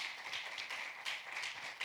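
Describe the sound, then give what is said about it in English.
The audience of Truth Movement Church applauds steadily for a couple of seconds, many hands clapping together into a dense, hissy wash with small swells. It is fairly soft, with no voices. “Give yourselves a round of applause for...”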